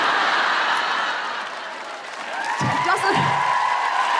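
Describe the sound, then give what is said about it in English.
A crowd cheers and applauds when men aged 21 or over with a degree and property are asked to cheer. A steady wash of noise dips briefly, then swells again, with a few voices shouting and whooping above it near the end. “So if you're a man, you're 21 or over, and you have a degree and property. Give us a cheer.”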